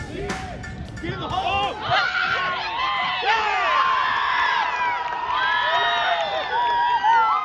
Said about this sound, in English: Do you hear the fans cheering, the excitement in their escalating and high-pitched voices, the buzzing atmosphere that you wish you were a part of? Well, that's the sound of many men's soccer games in Martin Stadium this fall,